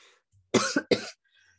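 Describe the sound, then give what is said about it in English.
A short burst of coughing fit: two or three harsh, raspy coughs in quick succession, loud against an otherwise quiet background with no talking. “I had a coughing fit.”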